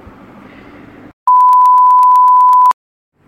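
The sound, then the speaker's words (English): A loud, steady, high-pitched censor-style beep marking the start of a clip holds for about a second and a half, preceded by a short stretch of muffled noise and followed by silence. “And the official clip will start after the beep.”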